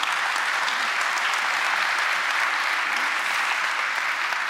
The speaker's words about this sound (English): Yeah, go ahead, clap.